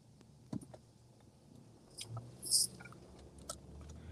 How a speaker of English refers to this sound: It's funny, though, because I hear your car in the background, but I don't hear you.